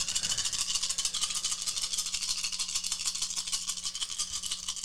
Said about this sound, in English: Just gonna roll these dice for an hour. We're never gonna end.